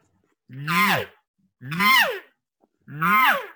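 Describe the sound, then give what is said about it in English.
Three evenly spaced cow elk contact buzz calls, each a short, rough, nasal mew that slides downward in pitch, fairly loud and alone with silence between them. “That is a call that a cow elk can use all throughout the year.”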